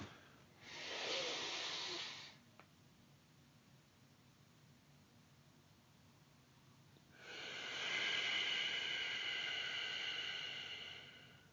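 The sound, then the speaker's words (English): Deep, forceful breathing in the Wim Hof style, the first round: a loud rush of air lasting under two seconds, a quiet pause of about five seconds, then a longer, hissing breath with a rougher edge. “So I'll do the breathing the first round, then I'll say it.”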